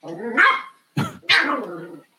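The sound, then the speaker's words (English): A female dog barks loudly, three sharp, drawn-out barks in quick succession with brief pauses between them. “Does your dog like Gibbs that much?”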